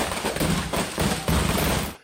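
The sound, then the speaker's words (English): A truckload of fireworks ignites in a neighborhood: a dense, continuous barrage of explosions crackles and booms loudly, bursts overlapping in rapid succession like gunfire, rockets flying in every direction, with a few stronger surges, before cutting off abruptly. “A truckload of fireworks ignites. The neighborhood becomes a war zone with rockets flying in every direction.”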